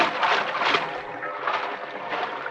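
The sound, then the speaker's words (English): Water splashes and sloshes steadily as a man swims away from a boat for distance rather than speed, a continuous wash of noise that swells in soft surges. No voices are heard. “I didn't swim for speed, but for distance.”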